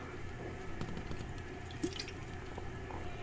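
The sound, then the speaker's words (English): Someone takes a quiet sip of a drink, with a few soft wet liquid clicks and one brief slurp-like burst against faint background hiss, no talking. “Take a sip of whatever drink y'all have.”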